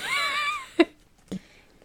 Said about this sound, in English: Oh my gosh, I was about to say sorry for the technical error and I just pressed play and record, just started coughing. Choked.